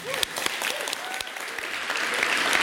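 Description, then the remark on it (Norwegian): An audience at Union scene in Drammen claps steadily, welcoming a historian on stage: a dense wash of many hands that swells slightly toward the end, with a few faint whoops or cheers rising above the clatter. “En stor applaus til mannen som har fordypet seg I dette gamle yrket”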